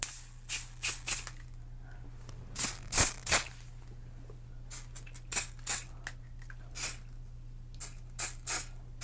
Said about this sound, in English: Okay, now we need to hairspray it or it will not hold for the day, so I'm just gonna gently spray. This is like insane. We do not need a lot at all.